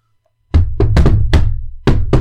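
A jaunty, rhythmic knocking on a door: a quick run of several loud knocks, a short pause, then a couple more raps to finish the pattern.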